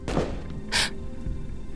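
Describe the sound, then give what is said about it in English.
A single muffled gunshot sounds from the street, a dull, brief thump, followed moments later by a short, sharp burst of hiss over a low, steady background. “There's a muffled gunshot from the street.”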